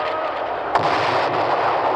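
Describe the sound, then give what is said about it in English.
Fireworks with streamers and a shower of stars bursting over a dense, steady crackling roar, with one sharp, loud bang standing out partway through and a softer pop shortly after; no voices. “Look, streamers, a shower of stars. It's marvelous.”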